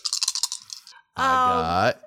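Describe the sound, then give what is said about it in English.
Dice clatter and tumble across a hard surface in a quick burst of sharp clicks for about a second, followed after a brief pause by a sustained, wavering vocal tone. “I rolled. I didn't need to roll.”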